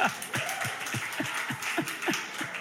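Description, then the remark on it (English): An audience claps for the media team in a steady, even rhythm, a dense wash of hand claps with soft low thumps on each beat, moderately loud and continuing without any voices. “Oh, round of applause for the media team, amen.”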